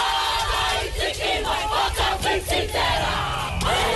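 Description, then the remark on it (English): A kapa haka group chants a welcome in loud, forceful unison, rhythmic shouted phrases rising and falling over steady crowd noise, with sharp accented bursts throughout, greeting a finisher at the finish line in Hamilton. “And we've got a Kapa Hapa group welcoming, oh, I'm getting emotional, welcoming him to the finish line.”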